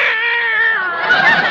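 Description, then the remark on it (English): A single long, drawn-out meow from Minerva the cat, loud, with a wavering, whining tone that rises into a rougher, more strained cry toward the end. No one speaks. “The way this cat eats is a caution. She's getting fat as a horse.”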